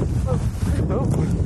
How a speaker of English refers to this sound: Oh. Windy.